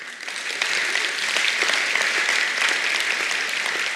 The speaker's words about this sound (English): We can give him a round of applause.